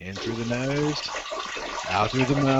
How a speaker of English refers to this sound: It's like a mountain stream coming down, just water flowing.